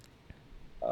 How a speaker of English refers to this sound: Sorry for the notification noise. Oh, you're fine. I didn't even hear it.